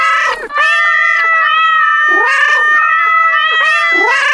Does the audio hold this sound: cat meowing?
yes